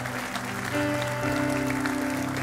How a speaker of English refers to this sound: Somebody give the Lord a clap offering of praise.